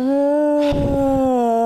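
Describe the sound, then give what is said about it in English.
A long, whiny yawn: one steady, high-pitched vocal tone holds throughout, with a breathy rush of air partway through. It's fairly loud, with no talking. “Oh, no, yawning. Our episode's going to sound boring.”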